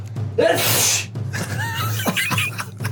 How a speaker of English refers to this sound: Sorry. Bless you. I had to sneeze.